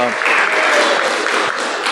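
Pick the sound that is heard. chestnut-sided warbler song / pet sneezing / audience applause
audience applause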